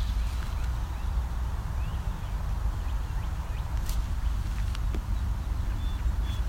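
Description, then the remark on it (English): A brown-headed cowbird gives faint, thin high whistles and brief squeaky notes against a steady low rumble of wind or outdoor noise. “It's a brown-headed cowbird.”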